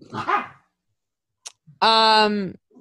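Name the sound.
dogs barking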